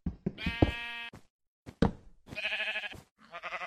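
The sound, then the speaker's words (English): Three loud sheep bleats in quick succession, each a wavering, nasal baa, with a few soft thumps between them and no talking. “All right, these sheep are going to drive me nuts.”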